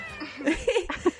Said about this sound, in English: Like, it's just like, surely, like, just make a cat noise. Go into Foley, pretend to be a cat. It would be better than hearing the same 2 noises over and over again.